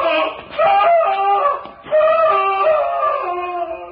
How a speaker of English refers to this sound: Sounded like a man in mortal agony.